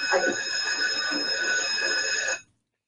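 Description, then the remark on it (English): A loud electric alarm bell at a bank rings continuously with a harsh metallic clang, set off by a pressed alarm button during a bank robbery, sustained for a couple of seconds before cutting off abruptly into silence. “he hits the alarm”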